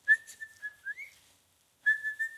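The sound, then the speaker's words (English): A person whistles in imitation of a birdsong: a steady held note with a brief upward slide, a short pause, then another sustained note. Clear, with no talking. “And I hear this bird singing like in the window, right? Maybe a couple feet away from me.”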